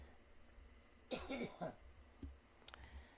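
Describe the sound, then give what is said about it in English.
A single throaty cough bursts out, followed by a short rasping throat-clear, then quiet room tone with a faint click near the end. “I got a bit of a cough, I'm sorry.”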